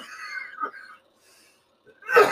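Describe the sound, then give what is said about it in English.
A raspy, wheezy throat clearing, then a short silence before a sharp, loud cough bursts out at the end. No one speaks. “Like I said, you'll hear me coughing throughout this podcast, and I apologize.”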